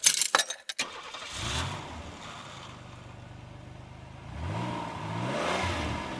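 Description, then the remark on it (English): Keys jingle briefly, then a car engine cranks and catches, settles into a steady idle, and revs up loudly twice near the end. No one speaks. “And we're going to grab my keys and we're going to get this motherfucker started.”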